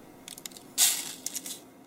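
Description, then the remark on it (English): Coffee grounds are collected and poured into a filter while making coffee, rustling and scattering in one soft, gritty pour, surrounded by a few lighter scraping ticks, fairly quiet with no talking. “The collecting and pouring of the grinds into the filter.”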